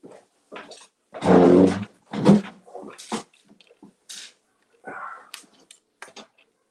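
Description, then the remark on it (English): A dog named Bonnie scratches at a door in a series of irregular scraping bursts, fairly loud, with a longer, heavier rasping burst near the start and quieter scuffs after. “My ferocious my ferocious dog was scratching on the door.”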